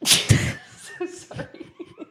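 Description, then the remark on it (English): A single loud, sharp sneeze bursts out, followed by a few soft, breathy chuckles and murmurs. “Bless you”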